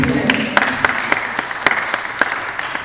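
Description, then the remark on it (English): An audience applauds for Pastor Ben as he comes up to speak, a steady wash of clapping with sharp, evenly spaced claps cutting through about every quarter second, giving the applause a brisk, rhythmic pulse. Nobody speaks over it. “Can we please give Pastor Ben a round of applause as he comes up here today?”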